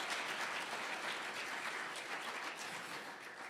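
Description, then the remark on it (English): A crowd applauds steadily in celebration, many hands clapping in a dense, continuous patter that holds at an even level, fading slightly toward the end. “Clap your hands and celebrate that we have a different perspective.”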